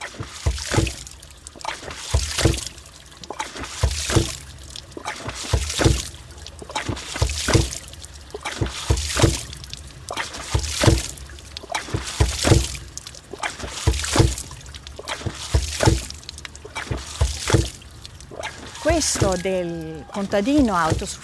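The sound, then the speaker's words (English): A hydraulic ram pump, an automatic water pump running without electricity or fuel, lifts water to a higher level, its valve thumping in a regular beat about once a second amid rushing, splashing water, with a short burst of voice near the end. “And the Aries plumbers are the most simple machines to pump up the water without using electricity or even fuel.”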